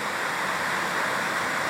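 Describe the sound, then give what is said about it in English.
Heavy rain pours down in a steady, dense hiss that holds loud and even throughout, with no breaks and no voices. “So we're getting some good rain here.”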